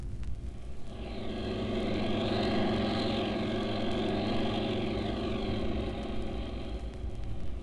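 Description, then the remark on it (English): A steady, droning engine hums continuously with deep rumbling harmonics and a faint rising-and-falling whine, like a propeller plane cruising in flight, flying from New York toward Black Rock off the coast as dusk nears. No voices are heard. “I hope we reach it before it gets too dark to land the plane.”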